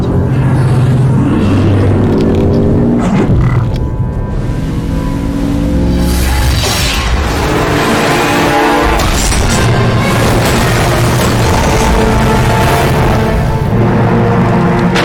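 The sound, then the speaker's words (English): The Mako vehicle crashes in a video game with loud, sustained rumbling and repeated booming impacts, layered over a steady droning score for the whole stretch. No one speaks. “Well, we've crashed the Mako.”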